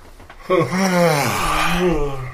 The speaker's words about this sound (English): God, no, I really do need to yawn. I don't know what's going on.